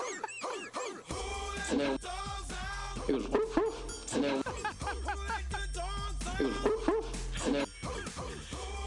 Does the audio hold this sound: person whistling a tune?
no